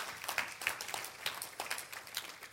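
A church audience claps for the Lord in a morning service, a dense, continuous patter of many overlapping claps, steady throughout without any voices.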